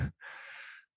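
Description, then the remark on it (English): A single drawn-out yawn, a breathy, slightly voiced exhale lasting under a second, heard after a short low thump, with no talking. “Please excuse the yawns.”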